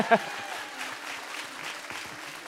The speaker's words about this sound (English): And did he just leave? Okay, well, go ahead and clap for him then.